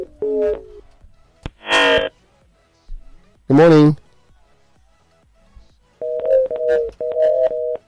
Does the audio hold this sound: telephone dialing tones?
yes